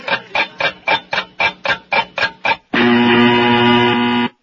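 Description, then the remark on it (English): A quick run of about nine short, evenly spaced electronic pulses gives way to a loud, harsh, steady buzzer tone that holds for nearly two seconds before cutting off; it is a new, improved, longer version of a show's buzzer. No one speaks. “That was our new and improved longer buzzer.”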